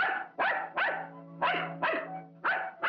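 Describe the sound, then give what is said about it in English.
A dog barks six times in a steady, rapid rhythm, each bark loud and sharp, with no voices or other sounds around it. “Would you insist upon going with me if I walk the dog?”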